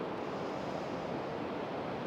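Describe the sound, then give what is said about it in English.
Ocean surf washes steadily onto a beach, a continuous broad hiss of breaking water with no voices, heard as a soft, even roar. “We're on the beach, on the ocean, breathing in the ocean air.”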